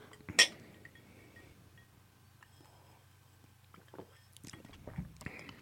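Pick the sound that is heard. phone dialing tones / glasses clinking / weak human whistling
glasses clinking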